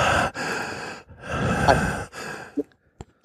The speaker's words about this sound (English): Adjust your mic so you're not breathing directly into it.